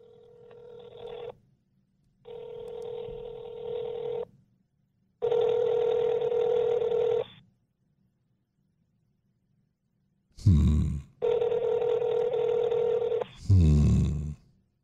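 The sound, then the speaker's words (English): A phone call placed from a cell phone rings out through the earpiece, with long steady ringback tones repeating at regular intervals and no one picking up, plus a couple of short louder bursts of noise near the end. “You called from a cell phone to that number, and no one is picking up.”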